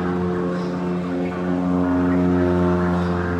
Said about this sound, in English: I don't know if that's like a fighter jet or a helicopter or what, but it seems quite noisy. Okay, it's moving on.